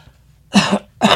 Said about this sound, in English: Sorry. I was trying not to do it in the mic, and I just coughed all over her.